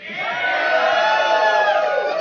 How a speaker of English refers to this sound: And podcasters. This might be the only room in the country in which podcaster gets a big, loud yell.